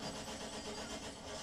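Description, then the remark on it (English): A truck engine grinds and churns steadily as it fails to start, a rough mechanical drone, with no voices present. “So the idea is to get on top of the truck. Yeah. Why not get in it? Oh, because it can't start.”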